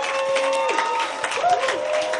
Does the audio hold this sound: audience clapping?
yes